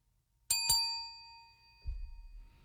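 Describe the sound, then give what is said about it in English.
A hand bell, used by a person to communicate, rings twice in quick succession, bright, its metallic tone lingering and slowly fading, followed by a soft low thump as it is set down or handled. “He's only communicating through the bell.”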